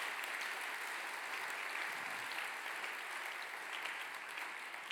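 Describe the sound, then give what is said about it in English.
A crowd applauds teachers steadily, a dense, even wash of many hands clapping at once that holds at a constant level for several seconds without any voices. “Yeah, they absolutely deserve a clap.”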